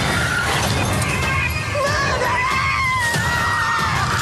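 Loud, sustained screaming erupts as a jump scare in a movie trailer, over a dense, chaotic din, with shrill wavering cries rising and falling above crashing noise for several seconds, overwhelming.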